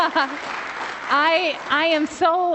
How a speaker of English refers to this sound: That was a nice clap, that was good. We can clap for that.